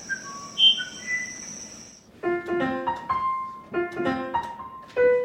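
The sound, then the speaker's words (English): Bird song calls: a few clear, high whistled notes, then a run of lower, richer tonal notes repeating in short phrases, fairly loud, with no talking. “So would you call the bird song that you listen to and transcribe, do you call that music?”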